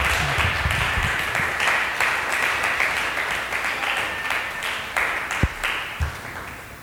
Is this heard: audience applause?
yes